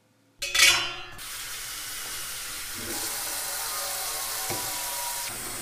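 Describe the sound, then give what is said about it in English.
Water pours into a brewing set being cleaned, starting with a sudden splashy gush that settles into a steady, hissing rush of running water for several seconds; the equipment is open and leaking. No one speaks. “This entire time I've been trying to fill up this with water and it's open.”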